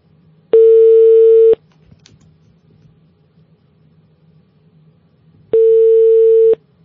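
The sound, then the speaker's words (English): Outgoing phone ringback tone on a call to the Beso Restaurant in Turkey: two steady, clear one-second tone bursts about five seconds apart, with a faint low hum filling the quiet gap between them. No one speaks. “We go, it's ringing.”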